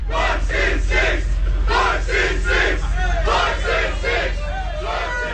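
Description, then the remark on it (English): Fans at a Chick-fil-A drive-through cheering and chanting after recognizing NBA player Giannis Antetokounmpo of the Milwaukee Bucks, loud shouted voices rising and falling about twice a second over a steady low rumble. “The Greek freak from the Milwaukee Bucks, having just won the MVP in the and the NBA championship, driving through a Chick-fil-A, and fans recognize him and start cheering.”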